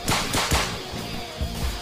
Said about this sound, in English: Like these pricks who are firing at us. Hell, and I took out most of them like a week ago.